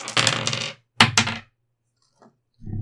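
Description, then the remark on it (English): A six-sided die (d6), rolled for a check in a game, rattles and tumbles across a table in a bright clattering burst, then lands with two sharp knocks before everything falls quiet. “Roll me a d6.”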